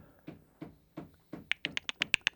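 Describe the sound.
Someone imitates a woodpecker with their mouth: four dull, evenly spaced knocks, then a quicker run of about eight sharp, bright clicks, with no talking.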